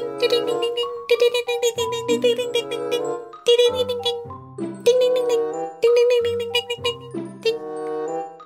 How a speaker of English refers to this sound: Is there a bell? I was just going to say that. There is a bell.